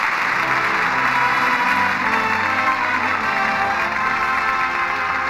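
studio audience applause

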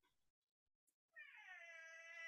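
cat meowing

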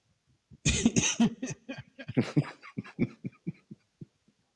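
coughing

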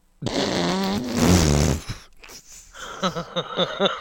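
fart sound effect

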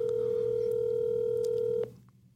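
telephone call being dialed

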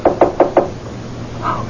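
knocking on a door

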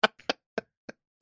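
coughing

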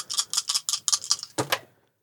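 dice being rolled

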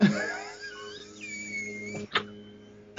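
leaf blower running outside

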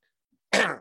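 throat clearing

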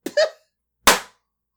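explosion

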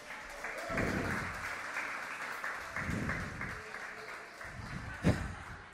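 audience applause

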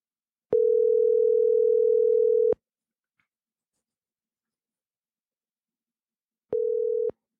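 telephone dial tone

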